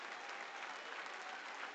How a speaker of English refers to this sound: And now I want you to clap your hands to the Lord like he's coming back in the next 3 minutes.